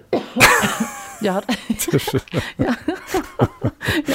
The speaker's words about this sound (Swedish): Har du hållit inne på den där hostan nu? Om du har tyckt att jag suttit och pratat i falsett så är det för att jag har hållit inne med det. Men, du vet, ett enda host.